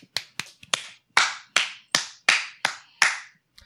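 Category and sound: crowd, round of applause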